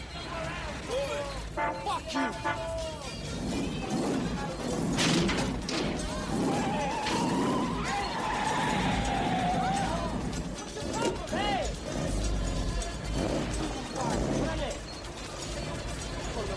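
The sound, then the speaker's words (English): A car slams into a parked 1964 Chevy Impala with men sitting in it on a boardwalk, heavy thuds and crunching metal, then grinds as it shoves it out of the way, amid engine noise and shouting voices. “Yeah, and he just comes up and he crashes into them and pushes their car out of the way.”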